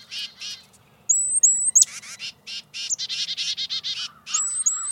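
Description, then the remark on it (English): Small songbirds, titmice or chickadees, give alarm calls, scolding with rapid runs of harsh, buzzy notes, broken by a few thin, high whistled chirps, loud and unaccompanied. “Both make alarm calls that can help warn other birds about predators.”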